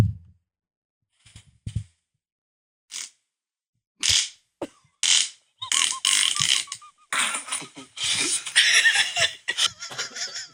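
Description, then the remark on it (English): A short, low fart noise followed by a string of sputtering, rattly bursts that stop and start like a struggling engine, building into a louder, messier stretch near the end with what may be laughter. “Stinky little fart, round 7.”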